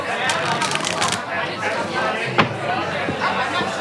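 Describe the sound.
A deck of 82 cards is shuffled, a dense run of quick papery riffles and flicks, with a sharper snap near the end and murmured voices in the background.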